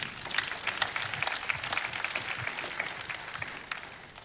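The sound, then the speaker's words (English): A crowd applauds steadily, dense overlapping claps forming a continuous wash of sound that fills the whole stretch at a fairly even level, with no one speaking. “Clap for me.”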